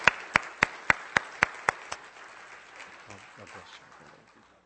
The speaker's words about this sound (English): Let's give him a good hand clap as he comes to minister for the Lord this morning.